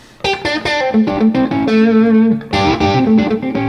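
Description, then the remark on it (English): A twangy country guitar lick in A, played with hybrid picking using the middle and ring fingers to pop the strings: quick, snappy plucked notes and double stops, a held flat-seven G note ringing in the middle, then another burst of bright notes. No one talks. “So phase two is getting used to the hybrid playing of using your middle and your ring finger to literally pop the strings.”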